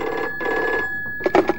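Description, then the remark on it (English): An old-style telephone, one of a battery of phones in a police radio control room, rings at 6:35 a.m. in two quick bursts of a bright, buzzing bell, clear, before a constable on duty answers briefly at the end. “One of the phones rings and is answered by a constable on duty.”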